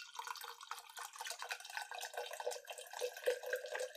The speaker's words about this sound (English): That sounds like more than half of a red solo cup's worth of pouring.